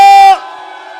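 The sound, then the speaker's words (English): A live crowd at Blue Frog on a Saturday night cheers for a performer, with a loud, high whoop ringing out over the noise before it drops to a lower, steady roar of voices that carries on for the rest of the second. “Ladies and gents, boys and girls, for one last time, please, please make a lot of noise for the one and only, the absolutely amazing …!”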